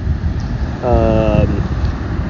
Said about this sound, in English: So anyways, there's a tractor passing by.